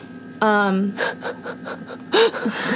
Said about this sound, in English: You can hear chips crunching.